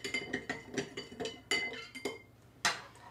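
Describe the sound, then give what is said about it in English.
A spoon stirs 2 spoons of ordinary salt into a glass of tap water to make a saline solution, clinking repeatedly against the glass with bright, ringing taps in a quick, uneven rhythm, then a brief pause before one last sharper clink. No one speaks. “This one's just filled with ordinary tap water, but I'm going to add 2 spoons of ordinary salt to make a saline solution.”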